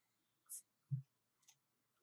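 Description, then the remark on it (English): Six dice rattle and land in a few quick, quiet bursts during a tabletop game: a bright clatter, a dull low thump, then another short crisp rattle, with no voices. “I'm rolling 6 dice.”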